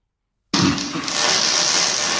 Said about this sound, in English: All right, we're going to pick one out here at random, and we're going to play a fart noise for you, and then we're going to tell you who farted.